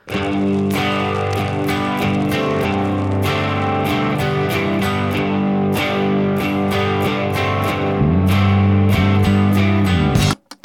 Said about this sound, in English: I don't think I can think of a finer guitar sound in the history of recorded guitar-based music. Like the thing where there's the electric guitar, the perfect electric guitar with the perfect acoustic guitar layered over it